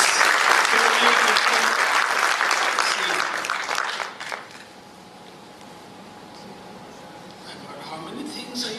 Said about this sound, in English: I think one round of applause for this.